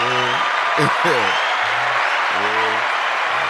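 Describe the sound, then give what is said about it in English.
Steady, dense hand clapping runs the whole time, a continuous hissing patter of many hands, with voices calling out and talking over it in short bursts. “You need to hear some hand clap and praise for that.”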